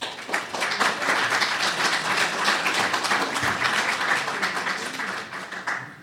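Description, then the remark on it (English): An audience applauds to welcome a panel, many hands clapping in a dense, sustained wash of crisp claps that holds at an even level for several seconds before starting to thin out near the end. “So, ladies and gentlemen, please welcome your panel.”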